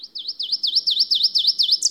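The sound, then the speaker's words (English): A bird sings a rapid chant of about eight high, sharp swooping notes in an even series, strong and clear with no voices, ending on a slightly higher note. “a sort of accelerating chant. Commencing in a very low key, which makes him seem at a very uncertain distance, he grows louder and louder until his body quakes and his chant runs into a shriek, ringing in my ear with a peculiar sharpness.”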